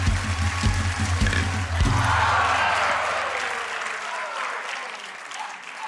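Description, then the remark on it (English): An audience at a juggling show applauds a juggler's bowling-ball trick in a steady, dense wash of clapping that stays loud throughout, with a low rumbling hum underneath for the first four seconds before it drops away. “Clap quick.”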